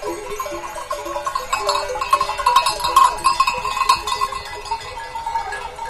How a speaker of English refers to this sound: We descend, finally, to the village of Yubong. Cattle and long-haired yak graze beside whitewashed farmhouses.